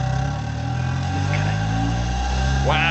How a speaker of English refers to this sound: You just caught it nicely, and it really made a huge revving sound as the engine fired up.